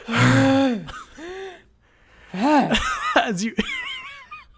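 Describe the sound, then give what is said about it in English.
A voice imitates heavy, labored breathing: a few loud, strained gasps for air with rising and falling pitch, separated by short pauses. “After moving a few inches, you're breathing hard and have to rest.”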